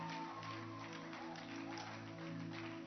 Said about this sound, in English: Oh, let's welcome her with a wonderful hand clap. Yeah. Oh, please help her. Please help her. Please encourage her. Encourage her with a hand clap.